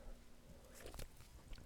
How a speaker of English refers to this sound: Let me show you how I swallow. Ready? Right? Can you hear it?